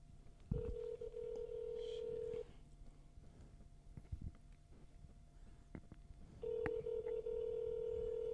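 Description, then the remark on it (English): An outgoing phone call rings through a handset as the caller phones someone back after the call cut out: two long, steady ringback tones separated by a few seconds of quiet, with faint clicks and rustling in between. “No, we gotta call him back. Hold up. I'm calling him back.”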